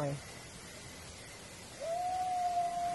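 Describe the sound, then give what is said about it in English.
A long, steady guttural howl, like a growl-yell combination, rises out of hissing background noise partway through and holds a sustained note to the end, with a brief similar cry fading out right at the start; recorded on small lavalier microphones. “It was like a guttural, like a growl yell combination.”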